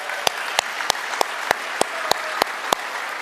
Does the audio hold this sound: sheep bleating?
no